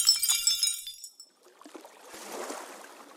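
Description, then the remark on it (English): Glass shatters sharply, bright shards tinkling and ringing for about a second, then fading into a softer, steady rushing hiss like moving water. “Everything turns red, and all he hears is the sound of breaking glass.”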